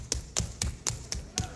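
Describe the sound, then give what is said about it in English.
Six crisp shoe taps strike a hard floor in a quick, even rhythm, clear, a percussive dance step called the scissors, with no voices over them. “I learned the scissors right here in Mountain View.”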